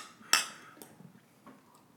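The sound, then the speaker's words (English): Glasses of Stone IPA beer clink together in a toast: one bright, ringing strike with a short shimmering tone, followed by a softer second tap and faint rustling. “So how about a cheers?”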